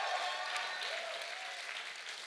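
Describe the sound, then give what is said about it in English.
An audience bursts into steady, dense applause for the Lord, with faint shouts and cheers rising through the clapping. The noise stays loud and even from start to finish, with no one speaking. “Give a Lord a clap and a shout if you believe that.”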